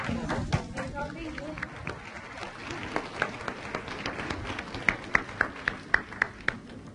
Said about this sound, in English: J'entends le maître des applaudissements. Je pense que le maître Qinghai arrive. Pelos aplausos, julgo que a mestra está a chegar.